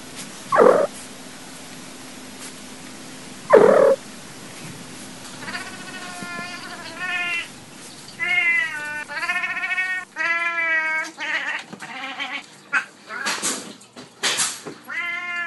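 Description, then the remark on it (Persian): A cat grumbles and growls in a string of wavering, drawn-out moans, with a low purring rumble underneath; two sharp knocks sound early before the grumbling builds, fairly loud. “یک دقیقه و پنج ثانیه به صدای گربه گوش کنید که قرم میزنه.”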